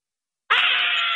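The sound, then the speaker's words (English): Yoko Ono, calling in by phone and reacting to a Paul McCartney interview, lets out a sudden, loud, sustained high-pitched scream after a brief silence, holding steady without breaking for words. “When she screams like that, it means she liked it.”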